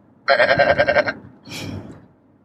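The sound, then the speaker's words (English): A person imitates a sheep with a loud, wavering "baa" that trembles rhythmically for about a second, followed by a shorter, breathier bleat. No other voices or sounds. “Here, let me speak their language. So annoying. Fucking sheep.”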